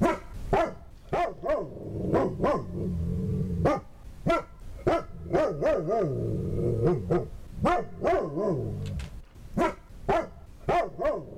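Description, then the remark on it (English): A dog, Major, Joe Biden's dog, barks loudly over and over in quick, uneven bursts, with drawn-out whining, growly tones between barks, and no talking. “But there was an interview earlier with Major Biden, Joe Biden's dog, and this is what he had to say.”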